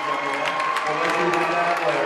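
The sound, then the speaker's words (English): A wrestling arena crowd roars steadily before a 120-pound championship bout, a dense wash of cheering and clapping with many overlapping voices, holding at a loud, even level the whole time. “we'll get a chance to find out just how loud this crowd is going to be.”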